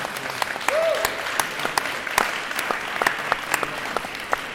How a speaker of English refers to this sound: Thank you very much to everyone. A big round of applause for everyone.